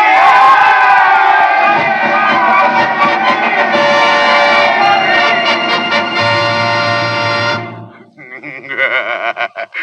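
A large crowd roars and cheers in triumph at victory after driving back the British in the city's defense, a loud, sustained wall of shouting voices that drops off abruptly near the end, leaving a few scattered cries.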